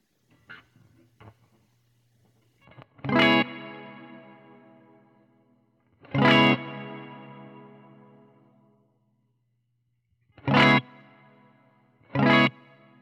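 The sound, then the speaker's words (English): An electric guitar played through a delay and reverb effects pedal: a few soft plucks, then four loud strummed chords, each leaving a long, shimmering wash of echoing tail that slowly fades. “So I think it's a way to decide how much reverb you've got with your delay”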